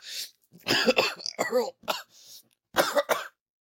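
A person coughs and clears their throat in several harsh, sputtering bursts separated by short gaps, fairly loud, after swallowing aloe water wrong, with a chunk going down the throat.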